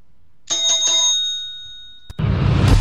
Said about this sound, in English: ring the bell.